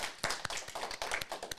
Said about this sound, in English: Yeah, go ahead, clap for yourself. That's yeah, great. Yeah. I'm clapping with the audience.